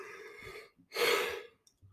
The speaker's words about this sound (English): Anyway, you either heard me yawn or didn't hear me yawn. That's the game we're playing today. When's he gonna yawn?